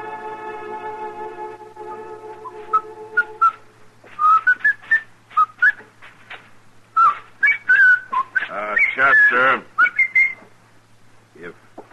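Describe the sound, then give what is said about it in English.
Someone whistles a lively tune, a quick string of bright, sliding notes, after a few seconds of a steady held tone, with a brief spoken word or two. “If you insist on whistling, would you mind doing it outside?”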